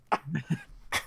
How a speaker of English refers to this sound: I'm only coughing because I got a dry cough, not the Rona.